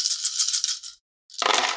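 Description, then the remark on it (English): Nine dice rattle in a shaker in two bursts during a tabletop role-playing game, rolled for fire intensity: a bright clattering shake, a short pause, then a fuller rattle with a lower rumble as they tumble out. “Okay, because out of 9 dice, I didn't roll any successes.”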